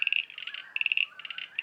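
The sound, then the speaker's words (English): Common eastern froglets calling in rapid, repeated bursts of high, clicking chirps, several short pulse trains overlapping, with no voices present. “I think that these frogs are common eastern froglets.”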